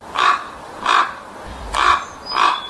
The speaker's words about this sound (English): And this is what a raven sounds like.